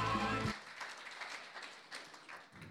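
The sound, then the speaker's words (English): A crowd claps in a steady, scattered patter of many hands for a couple of seconds, following a brief burst of voice at the start. “Excellent, come on, give him a clap, please.”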